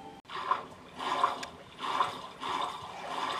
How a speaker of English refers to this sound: If you can hear that splashing, we're... splashing our way through shallow water.